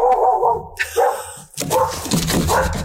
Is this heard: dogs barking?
yes